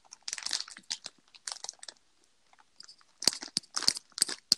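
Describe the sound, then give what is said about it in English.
Tapping on a microphone with fingers that have no nails: irregular bursts of scratchy, crinkly rustling, then a quick run of sharper, louder taps with a dull thump underneath. No one speaks. “Me tapping on the mic.”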